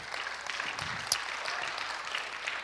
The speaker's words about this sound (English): A round of applause